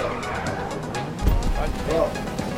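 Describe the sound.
A video game Baja truck drives and skids, a steady rough engine rumble with a sudden low thump partway through, faint indistinct voices mixed underneath.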